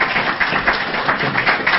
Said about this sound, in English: Thank you. Round of applause for the panel.